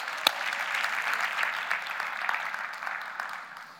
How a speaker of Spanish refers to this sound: Ese aplauso fue demasiado débil como para darle gloria y decir: Señor, lo creo.